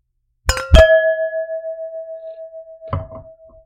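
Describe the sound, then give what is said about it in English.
Wine glasses clink together twice in quick succession in a toast with wines from French Lick Winery, leaving a clear, bright ring that hangs in the air for a few seconds before a softer third touch of glass. “Well, I think it's time to try these wines. Okay. Cheers. Cheers.”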